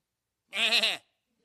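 A single sheep bleats once, a loud, wavering baa lasting about half a second, with silence before and after.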